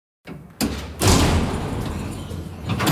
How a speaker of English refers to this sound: The door closes with a heavy clang. A bolt swivels and Tupac's alone.